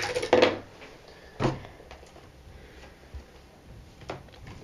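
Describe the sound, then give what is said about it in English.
Dice being rerolled for an acrobatics roll in a game rattle and tumble onto a hard surface, a burst of clicking clatter followed by a sharper knock and a few softer ticks as they settle. No one speaks. “I'm going to reroll.”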